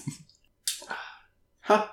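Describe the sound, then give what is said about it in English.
A few short, wet slurping sips of beer in quick bursts, separated by brief silences, ending with a louder breathy gulp. “Right, so let's have a sip, I guess.”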